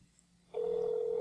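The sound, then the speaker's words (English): After a brief quiet moment, a steady electronic phone tone starts abruptly and holds at a constant pitch, loud, like a call being placed on speakerphone to an auto repair shop in Woodmere, New York, to leave a voicemail. “You said you wanted to leave a voicemail.”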